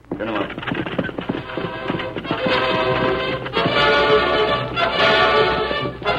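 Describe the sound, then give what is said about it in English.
Steady clip-clopping of a team of horses pulling a wagon driven by Tonto, with a faint rattle of wheels, a busy sound that runs throughout while voices talk over it. “Now drive those horses careful. Get them up.”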